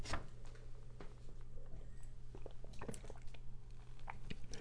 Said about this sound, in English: Hold on while I take a sip of coffee.